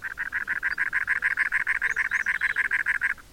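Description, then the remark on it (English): A cactus wren, a very large, strikingly patterned brown wren the size of a red-winged blackbird, perched atop a cactus in the American Southwest, sings its gravelly song, a steady run of about twenty harsh, rasping notes at a quick even tempo, mid-pitched and loud, with no talking. “Perched atop a cactus in the American Southwest, a strikingly patterned brown bird sings a gravelly refrain.”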